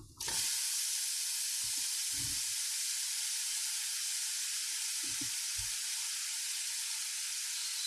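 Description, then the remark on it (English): A steady, loud sizzle of food frying, a continuous bright hiss that fills the whole stretch, with a few soft low thumps and clatters popping up now and then beneath it. “Sizzling hot takes are brought to you by Der Burgers.”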